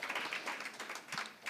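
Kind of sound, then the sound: crowd, applause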